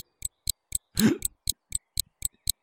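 A clock ticks steadily and crisply, about four ticks per second in an even rhythm, with a brief louder rustling burst breaking in near the middle.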